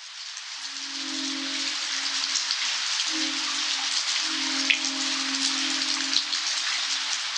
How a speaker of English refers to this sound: We leave you this week just ringing in the rain, just ringing in the rain. Eric van der Wijk recorded the subtle twinkling of wind chimes during a rainstorm in Modesto, California, and picked up a passing train and a howling coyote along the way.